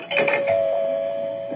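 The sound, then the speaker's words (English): A doorbell rings with a bright chime, its steady tone sustaining and slowly fading over about a second and a half, heard alone without any talking. “Oh, there's the doorbell”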